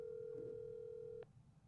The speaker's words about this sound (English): The phone is actually ringing.